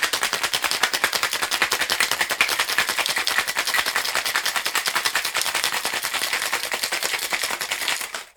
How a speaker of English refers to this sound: Put the lid on your cocktail shaker and give it a good shake, 10 or 15 seconds or so.